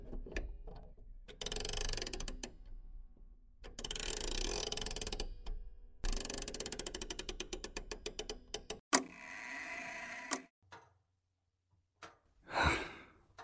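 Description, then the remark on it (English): A clock's mechanism clicks and ticks in several rapid bursts separated by short pauses, followed by a brief ringing tone and a soft breathy sigh; nobody speaks. “Your father's present now. I mean, clocks don't just measure time, but they keep us in the moment.”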